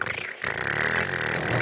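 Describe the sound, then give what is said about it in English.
A voice imitates a motorcycle engine with a loud, buzzy, steady drone that breaks off briefly near the start, then rumbles on without pause for over a second. “I'm about to Patrick Star this motherfucker motorcycle noises.”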